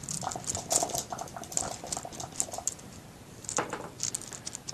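A D12 and a D6 die clatter right by the microphone during a dice game: a rapid run of sharp plastic clicks for a couple of seconds, a short pause, then another rattling burst as they tumble and settle. No one speaks.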